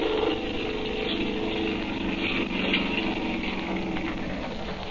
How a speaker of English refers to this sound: He's hauling him up into the boat. Now he's starting the motor up. He's turning around the boat, and here he comes.